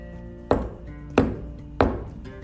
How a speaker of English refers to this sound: Maybe I'll just start banging on the tree and see what happens. And the unicorn walked over to the tree and did three knocks.